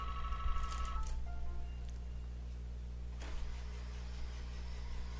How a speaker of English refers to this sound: my telephone is ringing. Let me just see if I need that. No, I do not. So let me turn off something so the sound isn't coming through.